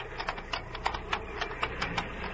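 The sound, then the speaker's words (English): A small plane's engine sputters, giving off a quick, uneven run of popping bursts over a low, rough drone. It is fairly faint, and no one speaks. “Should it sound like that? Sputtering?”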